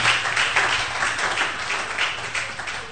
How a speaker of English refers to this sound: Clap your two hands for Jesus.